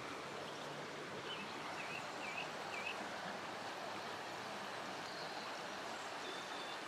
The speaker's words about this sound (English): This is our river. I've just seen there are four arches under the river. This is a tributary of the River Lee.